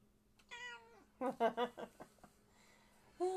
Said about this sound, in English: And we start off where we left off, with the tiger's meow. Yep. Oh my goodness. He's angry too.